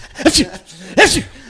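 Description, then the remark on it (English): A person imitates a 3.5-pound Pomeranian sneezing, making two quick, sharp, breathy snorts about a second apart, fairly loud, with a brief quiet pause between them. “They just sneeze a lot.”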